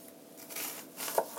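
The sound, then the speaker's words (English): A knife cuts an onion into slices on a cutting board: three or four quiet, crisp crunching strokes in an uneven rhythm, a couple ending in a sharp tap against the board. “Okay, so I'm back to my cutting board, and I'm going to cut up this onion, cutting it into slices to begin with.”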